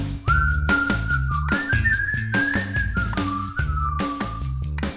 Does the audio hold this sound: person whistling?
yes